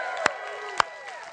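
A church audience shouting and cheering together for Jesus, with a couple of sharp, distinct hand claps cutting through the dense wash of voices.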